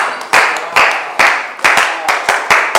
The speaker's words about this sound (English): Oh, is that the cheap clap? I don't know why you want to clap so cheaply.